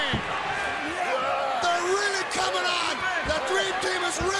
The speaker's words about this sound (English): Getting body slammed by Anvil.